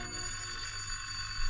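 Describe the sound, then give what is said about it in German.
A doorbell, rung for the building caretaker, rings in one continuous, unbroken peal, bright and metallic with a steady buzzing tone held at even loudness for about a second and a half. No one speaks. “Ich muss der Hausbesorgerin läuten.”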